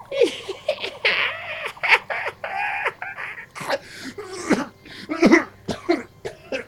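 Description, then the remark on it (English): A voice imitates a witch's rattling, drawn-out cackle broken up by harsh coughs, a run of raspy bursts that rise and fall for several seconds. “These pointy green teeth suddenly appear as she just lets out this long bone rattling crackle.”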